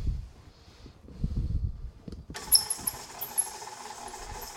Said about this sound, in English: Now that the sugar and the butter are in there, we're gonna cream them. That means blend them until it's all one thing. Here comes my squeaky mixer.